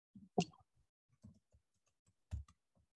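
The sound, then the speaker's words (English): Soft, scattered keyboard typing clicks tap out irregularly, a few slightly louder keystrokes standing out among fainter ones, quiet with no voices. “You're small typing.”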